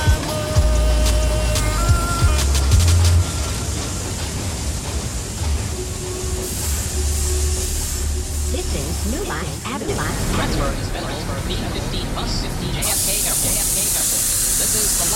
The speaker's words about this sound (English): Everyone, please leave the train. Thank you for riding with MTA New York City Transit.